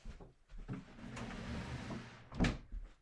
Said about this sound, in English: I should close my door real quick.